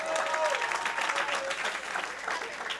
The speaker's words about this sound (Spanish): ¡Un fuerte aplauso para Julio!